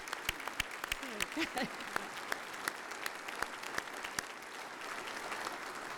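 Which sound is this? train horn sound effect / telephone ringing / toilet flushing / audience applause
audience applause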